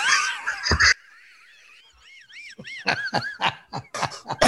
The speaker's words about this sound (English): Oh, dude, I just coughed and hurt my back. What does that mean?